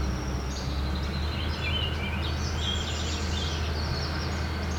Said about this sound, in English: Orchard oriole. Just still around here somewhere. And it rightfully lists it as an uncommon bird.